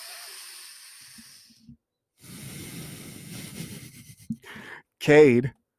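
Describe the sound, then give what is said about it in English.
A long, airy breath drawn in through the nose, a short pause, then a slow, rushing exhale out through the mouth lasting a few seconds. A brief burst of voice follows at the end. “Can we do a deep breathing? Just one time. In through the nose, out through the mouth on my count.”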